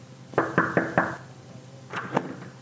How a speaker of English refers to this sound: We walked up to the front door and knocked.